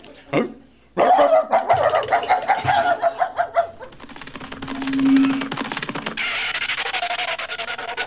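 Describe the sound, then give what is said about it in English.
A dog named Rover barks in a quick, excited run of loud, yapping barks for a few seconds as it is sent to get the paper boy, then the barking gives way to a steady, hissy commotion of scuffling noise. “Oh, look, here comes Rover. Come on, Rover. Go get the paper boy.”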